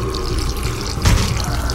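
Gasoline poured around a door in a steady splashing stream, with a brief heavier gush partway through and no voices.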